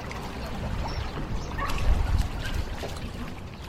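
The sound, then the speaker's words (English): Water laps and splashes against many boats assembled at a jetty at high tide in Brightlingsea, over a steady low rumble, a continuous outdoor wash of sound with no one talking, slightly louder around the middle. “So the blessing of the water has taken place by the Bishop of Colchester, and the dignitaries are now making their way down the jetty to board the many boats that have assembled, all with their flags flying.”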